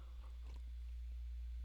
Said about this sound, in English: Let me take a sip of my coffee real quick.